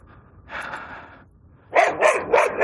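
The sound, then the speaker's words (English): A puppy barks and yips: one drawn-out bark, a brief pause, then a quick run of three or four sharp, loud barks in a row, with no one talking. “I tried to avoid that poor puppy. Miss Ripley just about jumped out of her skin, too.”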